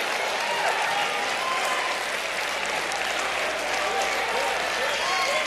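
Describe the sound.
A large audience stands and applauds wildly, a dense, loud, continuous roar of clapping that stays steady throughout, with faint voices and cheers mixed in.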